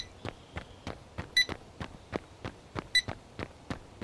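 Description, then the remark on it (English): A tinkered-with K2 EMF meter, used to find the source of a power drain, gives two short, high electronic beeps about a second and a half apart, over a steady, even ticking of sharp clicks. No one speaks. “And the K2 is going to help you find it? It will now I've tinkered with it a bit.”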